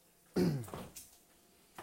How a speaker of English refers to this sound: Jesus Christ, this cough is hitting me out of nowhere.